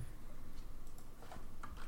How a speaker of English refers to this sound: Are you typing this in somewhere? Or am I?